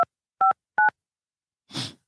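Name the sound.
telephone dialing beeps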